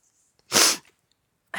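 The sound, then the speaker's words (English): A loud, congested nasal snort: a single harsh, breathy burst of air through the nose, followed after a short pause by the start of another, with no talking. “I may have to stop, pause this to blow my nose so I'm not snorting in your ear.”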